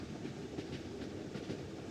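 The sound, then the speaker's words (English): A train rolls along railroad tracks with a steady low rumble and a rhythmic clickety-clack of wheels over rail joints, constant, with no voices. “Then, in 1854, the Frenier station of the Illinois Central Railroad was built.”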